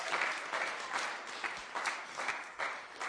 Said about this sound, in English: Give the Lord a hand clap in here. Come on, give the Lord a hand clap in here.